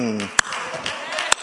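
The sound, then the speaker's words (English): Two sharp, loud hand claps, roughly a second apart, ring out over a person's speaking voice, each a crisp slap that cuts off quickly. “Yeah, it's a kind of a clap like,”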